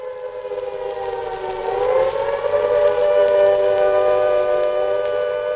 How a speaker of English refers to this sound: Within 8 minutes of Chamberlain's declaration, the air raid sirens began to wail, and it seemed that the worst had happened. But it was a false alarm.